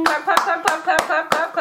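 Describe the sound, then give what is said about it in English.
Six sharp hand claps in a steady rhythm, about three per second, with voices chattering or whooping underneath between the claps. “We ain't telling her how to put the real claps in the podcast.”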